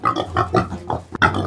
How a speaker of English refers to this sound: Unable to sell stock, a few farmers released their hybrid pigs into the wild. What they didn't know was that two decades later, there would be 62,000 of these pigs' descendants roaming around and ravaging Canada's prairie provinces.